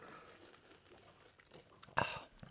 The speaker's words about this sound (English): Hold on, I actually haven't had my first sip yet. So okay, let's all sip and tell.